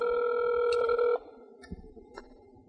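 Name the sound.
outgoing phone call ringing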